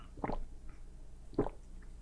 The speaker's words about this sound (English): It was like, hold on, let me take a drink of water here.